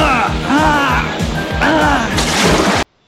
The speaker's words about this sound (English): Well, it sends the Piranha sub into a loop-de-loo, then ends up crashing, giving Rax a hot seat. Quite literally.